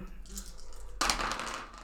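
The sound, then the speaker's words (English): Four dice clatter and tumble across a hard tabletop, a bright rattling burst that starts abruptly midway and skitters on until the end, after a quiet opening. “Why are you rolling 4 dice?”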